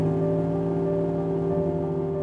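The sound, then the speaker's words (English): A pickup truck engine starts and runs, a steady low droning rumble with a faint whir that holds evenly throughout, with no voices. “the house is knocked back to the present by the sound of a pickup truck starting.”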